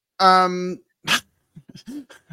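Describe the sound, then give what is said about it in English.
A dog lets out a loud, drawn-out whine, then a single short, sharp bark, followed by a few quiet fragments of a person speaking. “I have both of the dogs here with me. And Belle has decided that's a great opportunity to be inside as many times as she can”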